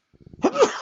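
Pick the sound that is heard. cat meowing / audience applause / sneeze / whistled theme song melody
sneeze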